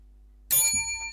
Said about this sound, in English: Well, you ring the bell and I'll press the thing.